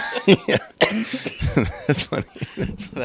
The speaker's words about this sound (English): cough as much as you want. Dude, that bong is crazy.